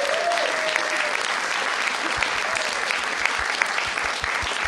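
A crowd applauds steadily and loudly, a dense wash of clapping that holds at an even level throughout, with a brief whistle early on and faint voices mixed in.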